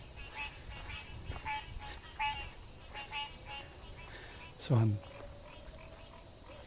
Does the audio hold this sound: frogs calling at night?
yes